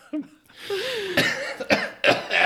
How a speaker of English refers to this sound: Made myself cough.